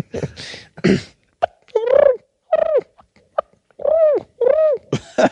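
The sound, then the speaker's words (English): A voice imitates a turkey purr: a handful of short, warbling, throaty calls with a bent, rolling pitch, separated by brief pauses and broken by a few breathy, noisy bursts. “Just hit me one more turkey purr.”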